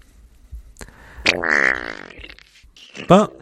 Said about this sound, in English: I didn't watch all of it, but it was just funny of them running around Hyrule and then just a loud reverb fart plays.